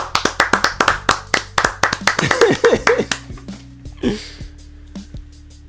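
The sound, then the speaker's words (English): A small group gives a round of applause for someone's mother, clapping in a quick, uneven burst of sharp hand claps for about three seconds, tapering off into scattered claps, with voices chattering and laughing underneath. “Of applause for your mom, man. Round of applause.”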